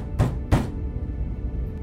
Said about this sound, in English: Cedric rang the door chime, but there was no answer. He knew Tarrant was in there, as he'd called off his shift, complaining that he wasn't feeling well. Tane banged on the door.